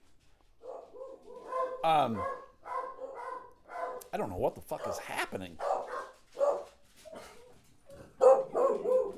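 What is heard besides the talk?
several dogs barking excitedly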